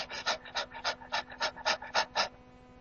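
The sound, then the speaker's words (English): A person imitates a dog's rapid, shallow panting to demonstrate the very shallow breathing seen when the lungs are involved: about ten quick breathy huffs in a steady rhythm, fairly loud, then a brief fade to quiet with no talking. “And when the lungs themselves get involved, this is marked by very shallow breathing. It's been described as like the breathing of a dog that's panting.”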